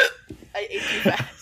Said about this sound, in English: Are you okay? I have hiccups.